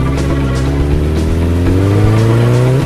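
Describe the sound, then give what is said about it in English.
A motorcycle engine starts and revs loudly, its droning pitch climbing steadily as it accelerates, with no voices over it. “I love a woman with a motorcycle. Get on. A bike is always my first choice.”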